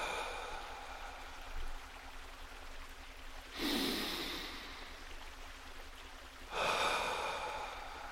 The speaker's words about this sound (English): So I invite you to take a deep breath in and a long, slow breath out. Trying this a few times, breathing in through the nose and out through the mouth.